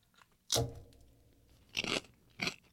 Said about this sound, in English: We just want you to hear the full crunch. Holy moly.